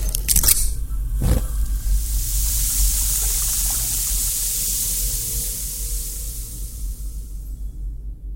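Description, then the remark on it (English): Eggs fry in a pan with a steady, bright sizzle. A couple of sharp knocks sound near the start, then the hiss continues alone and fades slightly toward the end. “What are you doing? Fried eggs.”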